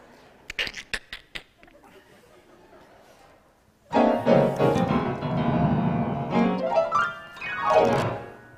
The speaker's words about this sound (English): I think I want to play the piano. Just because I want to. I'm going to do it. Can you please step aside? Yes, listen to this.